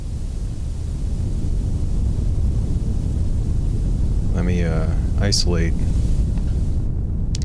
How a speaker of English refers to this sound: And my favorite here is a red noise.